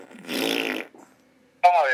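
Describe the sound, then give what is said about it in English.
A person blows a raspy, buzzing fart imitation with their mouth, lasting about half a second. After a short silence, a voice starts up again, clear. “you just break wind automatically”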